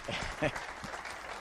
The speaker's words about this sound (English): Let's give him a round of applause as he speaks for us today. Thank you.